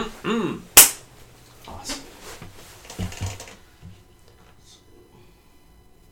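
A single sharp, loud hand clap rings out after a brief murmur of voice, followed by a few faint taps and rustles before things go quiet.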